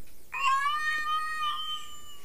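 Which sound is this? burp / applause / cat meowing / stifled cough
cat meowing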